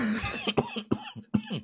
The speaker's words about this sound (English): Hey, you're gonna make me cough out everything.